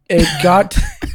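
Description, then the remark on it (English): A voiced throat-clearing grunt followed by two short, breathy cough bursts, loud, as someone performs the cough they use to clear the throat. “Like for instance, I used to have like this weird nervous tic thing where I would like you go cough to clear my cough to clear my throat, even if I didn't have anything in my throat.”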